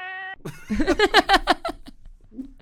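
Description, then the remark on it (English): A brief flat electronic tone cuts off into a quick, loud run of high, bouncing cat meows, used to block out a spoken swear word, trailing into a soft low murmur. “It's going to be blocked out by a cat.”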